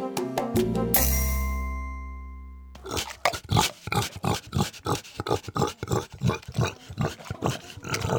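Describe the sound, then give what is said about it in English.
A short musical sting fades out, then a happy pig named Christopher Hogwood grunts in a steady, rapid rhythm of snorty, rumbling bursts that continue to the end, with no voices; recorded atop the Pig Plateau, a wooded clearing in southern New Hampshire. “Yes, there's nothing quite like the sound of a happy pig.”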